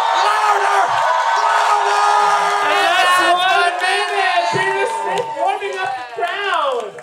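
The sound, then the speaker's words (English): A large crowd being warmed up and urged to get louder cheers and shouts continuously at full volume, many voices overlapping in a dense roar with rising, wavering yells, keeping up the loud din until a brief dip near the end. “I'm going to get louder and louder and louder and louder. And you get louder too. Louder.”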